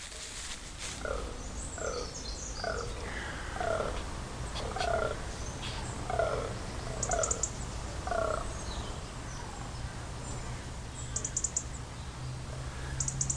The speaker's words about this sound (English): It's the grunting of a buck fallow deer. That's the buck. They're really rutting big time on the hill at the moment.